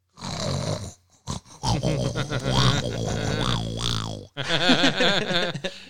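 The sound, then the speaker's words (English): A voice imitates a neighbor's loud, rumbling snoring, with rough guttural snorts and growly inhales repeated over several seconds, forceful, with a brief pause partway through. “My neighbor's snoring so loud again. He's dreaming he's a Harley Davidson.”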